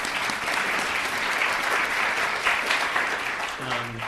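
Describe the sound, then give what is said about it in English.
An audience applauds steadily, a dense wash of many hands clapping at once that sustains evenly for several seconds before tapering, with a faint voice emerging near the end. “Hans was the person who put this all together, so we should give him a round of applause.”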